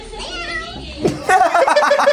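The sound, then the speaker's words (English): A boy's voice imitates a cat's meow, a short rising-and-falling cry, followed by bright, bubbly vocal sounds like giggling, moderately loud. “Was that him or was there a cat there that meowed off screen? He made the noise.”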